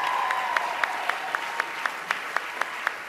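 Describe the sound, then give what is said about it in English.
An audience applauds actors steadily at the Golden Globes awards ceremony, the dense clapping holding at a fairly even level for a few seconds, with a few louder individual claps standing out at a regular rhythm. “Applause for these amazing actors.”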